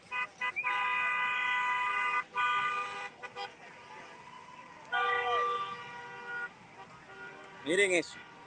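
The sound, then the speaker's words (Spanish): A caravan of cars passes by in Doral, blaring long, overlapping horn honks in several loud bursts, ending with a short warbling, siren-like toot over steady traffic noise. “O sea, estamos hablando de autos que salen, que no paran de salir.”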